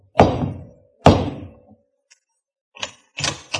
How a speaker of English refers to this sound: As I pulled up at the front door, I looked for the bell, but there was none. Nothing but a huge knocker looking like it weighed about 10 tons. I whacked it a couple of times and thought the house would fall off its foundations.